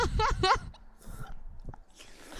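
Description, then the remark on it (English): A wet crunch of someone taking a big bite of a snack, followed by squishy chewing bursts, after a brief muffled voiced murmur at the start. “Should I really start crunching? I took a big bite.”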